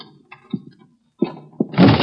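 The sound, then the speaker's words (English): An unlocked door is opened: a few sharp clicks and low rattles, like a latch being worked, are followed by a louder, rougher burst of noise as the door swings. No one speaks. “The door's unlocked, Mr. Weston. You didn't need that key.”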